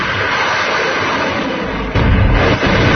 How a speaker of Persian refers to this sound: همین فقط ولشو کن که فشفشه بود هوا کردن مثلا از این چیزایی مثل کاتیوشا. من فقط اینجوری تیر در کنن. حالا معلوم نیست الان تیره کجا میره، تو کله کدوم بدبختی الان میخوره.